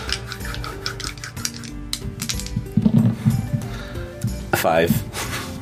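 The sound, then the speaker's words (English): Small four-sided dice clatter and tumble across a hard tabletop in a quick burst of sharp clicks and rattles, fairly loud, with voices murmuring underneath. “Ah, yes, my d4s. Excellent.”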